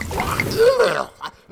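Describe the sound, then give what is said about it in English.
A brief burst of holy water being spat or sputtered out, a wet spraying splutter with a strained vocal groan, trailing into quiet with a few faint wet dribbles. “Begone, foul libation. Don't waste it.”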